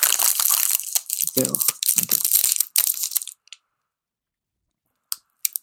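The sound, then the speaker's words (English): A candy wrapper crinkles and rustles for about three seconds as a Starburst fruit chew is unwrapped and munched, followed by near silence broken by a couple of soft mouth clicks. “You don't get much crunch on that. That's all caramel.”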